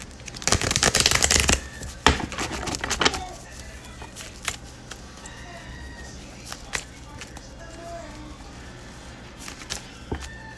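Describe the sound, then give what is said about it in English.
Tarot cards being shuffled: two loud, crisp riffling bursts in the first three seconds, followed by quieter scattered taps and rustles against a soft background. “Let's get one more shuffle.”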